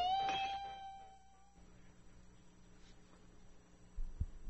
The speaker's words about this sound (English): She's attempting to shatter a glass with her amplified voice. She did it. You are now hearing the Memorex cassette tape recording we just made of …. Now you'll see a glass shatter again. But is it … or is it Memorex?